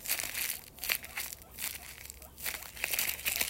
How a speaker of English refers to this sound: They really don't like crackling sounds. And that was the crackling sounds.